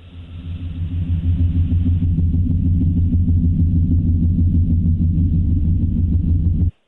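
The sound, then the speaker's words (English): A recording of the mysterious low hum reported by people worldwide, including in New Mexico, England, Canada and New Zealand: a deep, steady droning hum with layered low tones swells in over the first second, holds constant and loud for several seconds, then cuts off abruptly. No voices. “Yeah, no, the hum is almost more of like a subgenre of mysterious sound than a single noise, because people have these purported experiences of it all over the world.”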